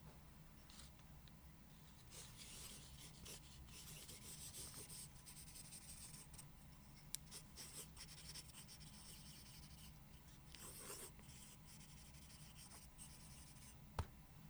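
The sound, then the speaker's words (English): A lead pencil scratches steadily across paper with quick strokes and short pauses between words, writing "I love my listeners" as an ASMR writing trigger, the soft graphite rasp continuing for several seconds with no talking. “The next ASMR trigger to test out is writing. So I brought with me my lead pencil, which I love doing my journaling with.”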